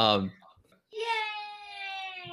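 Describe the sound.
A one-man cheer sound effect: a single voice lets out a brief sound, pauses, then holds a bright, high-pitched whooping cheer for over a second, fairly loud and steady.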